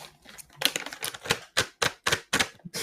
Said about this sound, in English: I was hoping that would sound more like a book. This is a fucking bag of cat food.